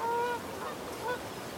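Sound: geese honking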